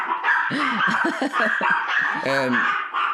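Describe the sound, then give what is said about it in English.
Three dogs bark and yip in quick overlapping bursts, fairly loud, ending in a longer, drawn-out yowl over a steady background hiss. “I have three dogs.”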